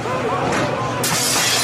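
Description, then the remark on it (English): A house's front window shatters as a petrol bomb is thrown through it during a mob attack, a sudden bright crash about halfway through, the high, splintering noise lingering to the end over a dense, rumbling background with voices. “Then a petrol bomb came through the front window.”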